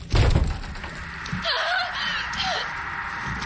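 A heavy slam hits a wooden door with a loud, booming thud and splintering crack, followed by a few seconds of strained, wavering creaks as the wood settles.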